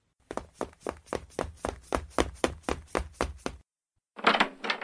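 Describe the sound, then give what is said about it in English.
A rapid, steady series of about a dozen firm knocks on a door, fairly loud, followed by a brief pause and a short burst of heavier noise. “Someone! At the door!”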